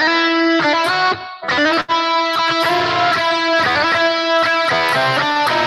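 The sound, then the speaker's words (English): A loud distorted electric guitar plays a choppy riff alone, a section of a guitar solo, with dense buzzing harmonics, quick note changes and a couple of brief gaps where the sound cuts out. “Kind of weird bit, which goes like, let's get distortion on.”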